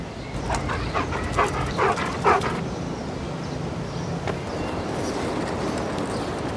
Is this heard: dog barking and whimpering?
yes